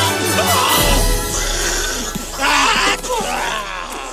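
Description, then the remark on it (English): Voices of people pretending to ride a go-kart imitate its crashing noises, producing loud, rough bursts of groaning, screeching vocal sound that overlap continuously for about four seconds, with a brief louder surge midway. “Here's a clip of them making those crashing noises with their balance.”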